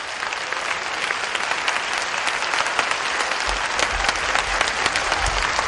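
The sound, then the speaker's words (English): Steady audience applause at the Be Organic Vegan to Serve the Planet conference in Lomé, welcoming Supreme Master Ching Hai by video conference, fills the whole stretch, a dense wash of many hands clapping at an even, loud level with no voices breaking through. “Ladies and gentlemen, with a warm of applause, please welcome the Supreme Master Ching Hai.”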